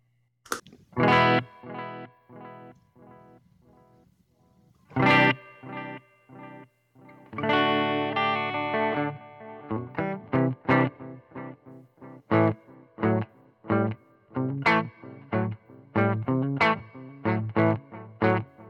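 An electric guitar played alone through a delay pedal with the reverb turned down: a mix of plucked single notes and strummed chords, each followed by distinct echoing repeats, with a slightly gritty, modulated tone.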